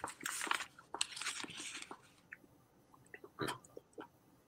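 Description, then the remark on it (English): Wet chewing of a wad of Big League Chew bubble gum, with smacking and crinkly squishing in uneven bursts, a dense stretch at first, then sparser chomps after a brief lull. “It makes you add in more Big League Chew. Now we're talking.”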